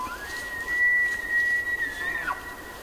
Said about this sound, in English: Jonathan Storm recorded these two male elk. Their competing testosterone-driven calls for female companions echo across a high meadow on an autumn evening in Yellowstone National Park.